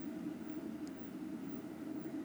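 An electric kettle roars at a full boil, a steady rushing, rumbling hiss that holds even and unbroken throughout, not loud, with no voices.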